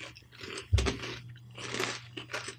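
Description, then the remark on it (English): A Kettle brand potato chip is bitten with one sharp, loud crack, followed by several bursts of crisp, brittle crunching as it is chewed, with no talking. “I mean, it's a potato chip. It's delicious.”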